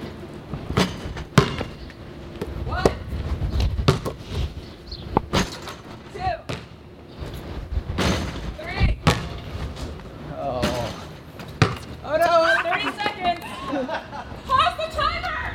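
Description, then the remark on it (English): A basketball bounces in irregular bursts of sharp, hollow thuds, some loud and some softer, during a timed basketball challenge, and bounces over a fence into a neighbouring garden, while people chatter and laugh in the background, their voices growing livelier toward the end. “The basketball has bounced over the fence into a garden that does not belong to us.”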